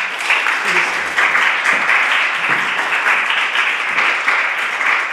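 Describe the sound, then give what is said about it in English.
An audience applauds a guest speaker after an evening talk, a dense crackle of many hands clapping at once that holds at an even, fairly loud level for several seconds without fading. “Clap him.”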